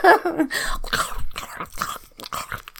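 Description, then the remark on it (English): Wet chewing with irregular smacking and crunching bursts, someone eating dinner, with no talking over it. “I'm listening to what you're saying and trying to mask my chewing.”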